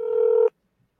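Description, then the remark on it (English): A single steady electronic telephone tone beeps for about half a second as a phone call is placed, clear, then cuts off abruptly into silence. No voices are heard. “I'm going to call one more time.”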